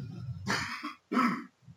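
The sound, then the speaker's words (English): Two forceful coughs from a single person, each a short rough burst with a brief pause between them, heard alone without any talking. “Awkward cough pause.”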